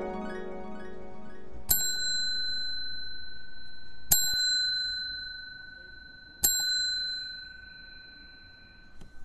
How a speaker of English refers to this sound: I think that's my favorite ring. That's the little bell with the paisley pattern on it.